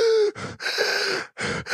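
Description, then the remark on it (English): A voice imitates the breathlessness felt playing basketball at Denver's high altitude with heavy, rapid gasping breaths, roughly four loud inhales and exhales in quick succession, with no talking. “And so, excuse my bad breathing, but that's how you feel on the basketball court in Denver.”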